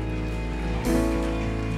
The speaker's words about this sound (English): Let's clap real quick, and let's celebrate that people have taken a step.